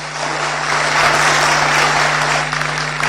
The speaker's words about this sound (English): Thank you. Let's clap one more time for him.